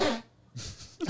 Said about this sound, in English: That was a sneeze. Wild.